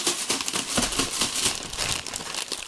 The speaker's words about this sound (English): Alright, I'm gonna open these Jet Puff marshmallows.